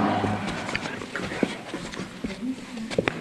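A female dog pants rapidly and excitedly, with scattered thumps and claw scrabbles as it jumps around, plus some faint background noise throughout.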